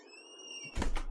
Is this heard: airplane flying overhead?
no